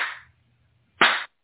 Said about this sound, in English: Let's clap and clear that one.